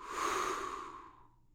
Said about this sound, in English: So let's get prepared for the story by taking a deep breath in and a deep breath out. And a deep breath in, and a deep breath out.